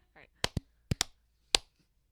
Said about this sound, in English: Let's clap because I was like confused.